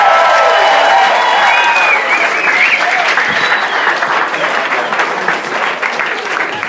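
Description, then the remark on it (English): A crowd applauds loudly and steadily for several seconds after a stand-up comedy set by Harland Williams, a dense wash of clapping with some whoops and voices mixed in, fading only slightly toward the end. “Get it up again for Harland Williams, everybody.”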